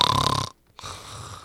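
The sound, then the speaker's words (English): A voice imitates a loud, rasping sleeping snore, one harsh drawn-out rattle, then a brief silence before a softer, breathy continuation. Prominent, with no other talking. “He said, you were snoring very loudly.”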